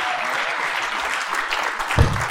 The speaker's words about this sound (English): So give a good hand clap and honor our pastor.